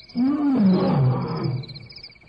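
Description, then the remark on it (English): A lion lets out a single deep, rumbling roar that swells, slides downward in pitch and trails off over about two seconds, loud and close, with a faint steady hum in the background. “That lion sounded too close.”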